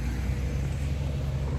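A car on the road gives off a steady, low rumble of engine and tire noise, holding even loudness throughout, with no voices present.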